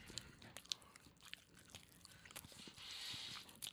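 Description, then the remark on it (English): Close, wet chewing with irregular crunchy clicks and smacks, right up against the microphone, with no talking over it. “We were informed before we went live that some of you guys don't like when we eat and chew into the microphone.”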